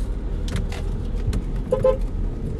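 A car horn gives a short toot over steady traffic rumble, with a few passing engine sounds and bursts of road noise around it.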